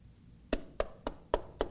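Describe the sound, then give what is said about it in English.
Five firm knocks on a door in a steady, evenly spaced rhythm, fairly loud, each a short hollow rap with nothing else going on around them. “A knock comes to the door.”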